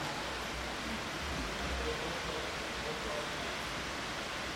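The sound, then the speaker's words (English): Steady, even hiss of falling rain on a blustery day, a dense wash of noise that holds at the same level throughout without any clear individual drips standing out. “It is raining, inside and out.”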